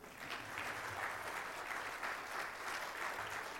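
An audience claps steadily throughout, a dense, even wash of applause with no pauses and no voices over it, applauding the money raised by a church yard sale.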